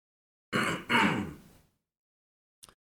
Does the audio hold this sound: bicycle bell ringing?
no